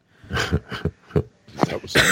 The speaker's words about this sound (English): Somebody want to do a quick word from our sponsor while I try and cough a lung up?